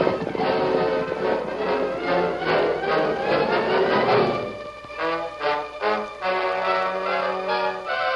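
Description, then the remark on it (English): Rapid galloping hoofbeats of the Lone Ranger and Tonto's horses, heading east along the Pony Express trail, pound along with dramatic orchestral music for about four seconds, then the hooves fade and the music carries on alone with sustained brass and strings. “They galloped just fast enough to keep their followers in sight,”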